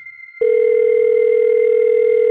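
A phone line ringing tone on a call to a home landline: after a brief quiet moment, a steady, loud electronic purr begins and holds unbroken for about two seconds, with no voices.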